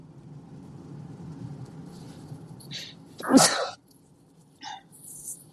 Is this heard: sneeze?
yes